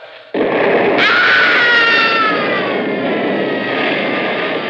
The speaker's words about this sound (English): That was Artie screaming. Artie being blown to bits all over again.